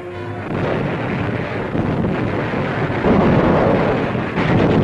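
A dense, continuous roar of battle at Tarawa, with heavy artillery booms and rumbling blasts, loud and sustained throughout, thick low-end noise with no voices.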